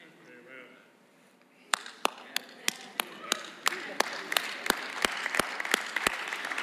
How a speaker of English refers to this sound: It's a good thing to clap in the house of the Lord. Clap your hands, all you people.